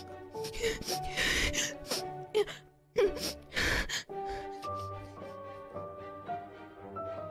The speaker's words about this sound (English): No, you're not coughing. You're crying.